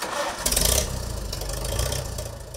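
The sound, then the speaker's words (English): A Farmall 350 tractor engine in Kansas cranks and catches with a brief loud burst, then settles into a steady, low, chugging idle rumble. No one speaks. “We're headed to Kansas to visit with Melvin Snoke about his Farmall 350.”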